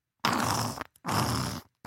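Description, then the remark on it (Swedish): A person imitates a child's wet, rattly breathing with a little saliva in the throat, two long raspy breaths with a gurgling, saliva-filled quality and brief pauses between. “Så får barnet upp lite saliv i halsen och blir lite rosslig.”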